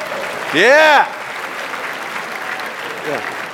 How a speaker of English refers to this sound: So if you are, just trust me on this, 50 and up, or your kids have graduated from high school, stand up. Let's give a rousing applause for the older men in the room.